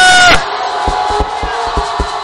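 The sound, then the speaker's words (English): A large church audience erupts in a loud, brief shout of "hallelujah", which then trails into sustained crowd cheering and noise with steady, regularly spaced low thumps underneath. “If you are an overcomer, can you shout hallelujah?”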